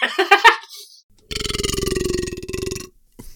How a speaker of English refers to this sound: Whoa, that was crazy. Whew. That was so like, that was so like, that was like a beefy burp. That was just amazing. That was a really good burp, dude. I might leave that in the episode, actually. That was amazing.